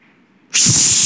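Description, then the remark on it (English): A voice imitates wine being poured onto a burning sacrifice and hissing on the fire: after a quiet moment, a sudden loud, sustained airy hiss bursts in and holds steady to the end, with no words spoken. “So now you got liquid being poured on top of this fire, right? What happens when you pour liquid on top of fire?”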